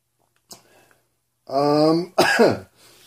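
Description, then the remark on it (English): A faint breath, then a loud, voiced throat-clearing rumble followed by a harsh burst of coughing. One person, no speech. “coughing”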